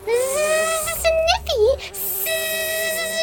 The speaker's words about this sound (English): The bees!